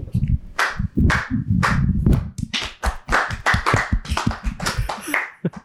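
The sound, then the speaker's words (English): A short burst of loud hand clapping, sharp claps in a quick uneven rhythm that speeds up and crowds together toward the end, with a faint voice underneath. “A round of applause.”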